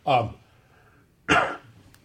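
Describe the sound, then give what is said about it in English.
Two harsh coughs separated by a short pause, each a loud rough burst with no talking around them, like someone struggling through a brief coughing fit. “Yeah, we can just cough for a while and fix that in the mix.”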